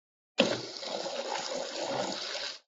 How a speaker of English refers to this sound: So we're going to put our lid on there. We're going to blend that up.